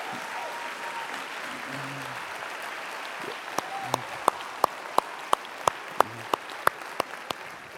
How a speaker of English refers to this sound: So if you want to talk about somebody that's seen everything and seen it all, and there she's sitting over there with the balloons on her wheelchair, and we want to give her a really good round of applause.